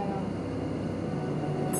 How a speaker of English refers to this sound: This bus is so loud.